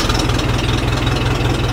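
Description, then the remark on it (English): An old engine, from a working 1956 Ford tractor or a 1967 Volvo sports car that Waldeyer, a maker in Maine, keeps in perfect running order, idles steadily: a loud, rough low rumble with a regular chugging pulse and no voices over it. “Like a working 1956 Ford tractor or a 1967 Volvo sports car that Waldeyer keeps in perfect running order.”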